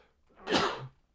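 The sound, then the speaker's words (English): A single sharp sneeze bursts out, a short explosive rush of breath that fades quickly into quiet. “I'm going to sneeze.”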